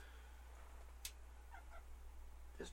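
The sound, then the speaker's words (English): A female cat gives a couple of soft, faint meows against a steady low background hum, with a brief sharp tap heard just before them. No one speaks. “I don't want to scare this cat away with this talks of Deep Space Nine and Mr.”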